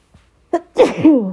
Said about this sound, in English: Ooh, I think I'm going to sneeze.